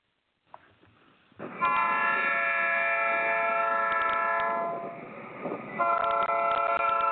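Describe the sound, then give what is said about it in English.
A loud train horn blasts from the westbound number 9 train at the Hushmo platform, one long sustained blow followed after a short dip by another, over the low rumble of the passing train. “Hey, when you hear the westbound number 9 sound that horn right there.”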